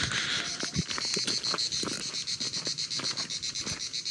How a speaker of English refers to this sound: You can hear the crickets, and it really is quite incredible.